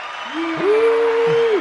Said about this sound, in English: So we'll do can do a crowd clap. Oh, yeah. We'll give you a crowd clap. Yeah, right there.